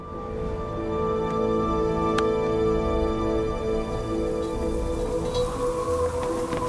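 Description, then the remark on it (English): Steady rain from a storm, a continuous dense hiss that holds an even loudness throughout, with a low droning hum running beneath it and no voices. “The wind is blowing toward the storm.”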